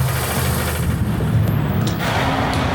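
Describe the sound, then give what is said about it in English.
A vacuum forming machine's pump runs with a steady, loud, low droning rumble and an airy hiss on top, sucking air through a mold with fine holes to pull molten plastic down, holding an even level for the whole few seconds with no voices. “So I'm going to suck the vacuum out, and it's off.”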